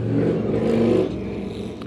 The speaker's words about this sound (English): That's a loud car or truck to just whiz past my window.